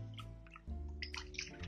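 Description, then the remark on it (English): A hand squishes and breaks up sourdough starter floating in a bowl of water, with irregular sloshing and splashing bursts over a steady low hum. “So what I'm going to do is I'm going to just break up this starter that's floating in my water by hand.”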